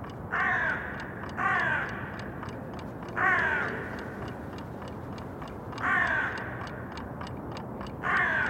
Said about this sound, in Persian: ما و این کلاغ‌های قشنگ نازنین که صبح سحر کوچه رو روی سرشون گذاشتن. دیدید کلاغ‌ها چقدر سحرخیزن؟